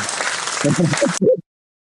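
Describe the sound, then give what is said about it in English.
Audience applause forms a dense, steady wash of clapping for about a second, then cuts off abruptly. A voice speaks briefly over the final part and trails on just after it. “Yeah, applause.”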